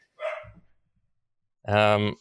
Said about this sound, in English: Someone rang the door to deliver something, and the dogs were like, oh, it's party time, who's here?